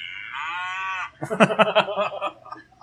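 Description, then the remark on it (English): A person imitates a cow mooing with one drawn-out, buzzy low moo about a second long, followed right away by quick choppy vocal sounds like chatter or laughter. “And I'm the Crimson Cow.”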